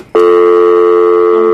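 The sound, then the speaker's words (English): A loud, steady electronic phone disconnect tone cuts in abruptly and holds unbroken after the caller hangs up. There is no talking and no other sound. “Oh, good. He hung up.”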